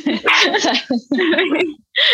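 A puppy barks in three quick, high-pitched, loud bursts, with short pauses between the yappy volleys.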